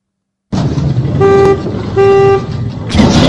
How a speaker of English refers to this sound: Who's honking? Him? Get out of the way. Jesus dude, Christ. How does he not notice that after one car? He's honking.